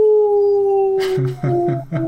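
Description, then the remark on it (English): A person imitates a wolf howl when picking PGA Tour golfer Matthew Wolf, holding one long, steady note for about a second, then breaking into several short, choppy yip-like bursts at a lower pitch. “Matthew Wolf, eh? The Wolf man.”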